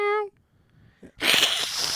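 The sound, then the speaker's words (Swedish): A person imitates a cat in a contest for the best cat sound: a short, tonal meow-like cry, a brief pause, then a loud, breathy hiss that holds to the end. “ni får gå in och rösta på Facebook vem som har bäst kattljud.”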